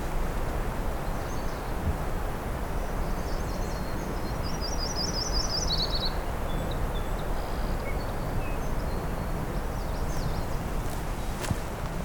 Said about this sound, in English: Get closer to this myrtle warbler.